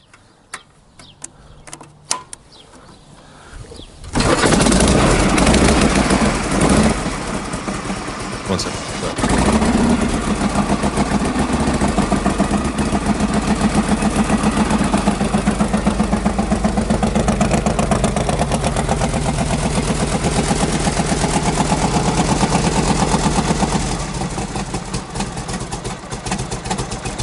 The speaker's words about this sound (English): Well, if you like things that sound like they're ready to die, we got to do the bonus 52 panhead. And this was a cold kickstart. The last like 6 seconds of this, I could listen to forever.